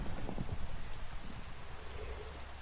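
Steady rain falls in a dense, continuous hiss, with soft irregular patters of drops mixed in, holding at an even moderate level throughout with no voices.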